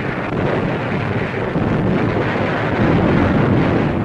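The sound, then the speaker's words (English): Thousands of tons of aerial bombs burst along Tarawa's waterfront and beachheads in a dense, continuous roar, the explosions blurring into one loud, rumbling barrage that barely lets up. No one speaks. “Thousands of tons of aerial bombs are rained upon Tarawa's waterfront and beachheads as the shore lights up like the crack of doom.”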